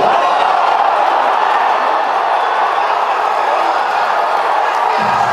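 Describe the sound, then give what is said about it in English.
A large baseball stadium crowd roars at a home run hit 485 feet just left of dead center field, over Monument Park, 117 miles per hour off the bat, in a steady, loud wall of cheering, with whoops and shouts blended into a dense, sustained wash of noise that holds for several seconds. “Listen to the crowd's reaction.”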